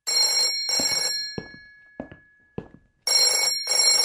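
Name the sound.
telephone ringing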